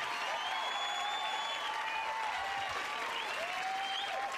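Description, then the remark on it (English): A crowd claps and cheers in a steady, dense wash of applause, with a few high whistles rising above it, holding at an even loudness throughout. “Hopefully we're not cheering for something bad.”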